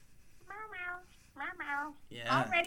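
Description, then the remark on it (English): A person imitates a cat with three drawn-out, wavering meows in quick succession, the last one louder and more strained than the first two. “Meow, meow.”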